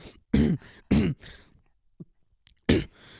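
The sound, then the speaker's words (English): Someone clears their throat three times in short, harsh, gravelly bursts, the first two in quick succession and the last after a brief pause, with no talking. “Didn't you say like clearing his throat was one?”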